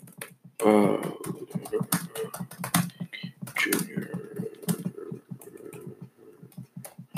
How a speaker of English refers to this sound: Sorry about the long typing. Trying to make sure you guys have the best information, the right thing.